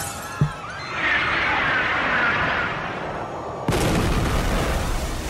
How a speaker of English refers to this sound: Gotta fire the gas missiles now.